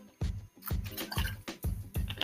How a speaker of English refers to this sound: One moment, I'm gonna take a drink of my water.